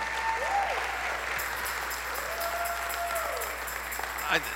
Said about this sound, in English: Hey, let's give God a hand clap of praise for our worship team. Can we do that?